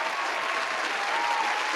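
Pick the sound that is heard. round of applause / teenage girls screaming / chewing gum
round of applause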